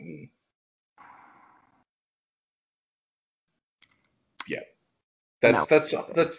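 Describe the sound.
A person makes exaggerated, heavy breathing noises: a breathy exhale, then a few quick clicks and a sharp intake of breath, before someone starts talking loudly.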